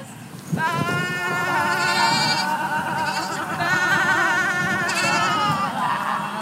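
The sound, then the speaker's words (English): About 20 people at a goat yoga class at Smithton Regional Airport bleat together like goats, a loud, continuous wash of overlapping wavering cries that starts abruptly and carries on without pause, echoing slightly. “The whir of a propeller, the thunk of a plane returning to a tin hangar, the sound of 20 or so people bleeding like a goat in the name of yoga.”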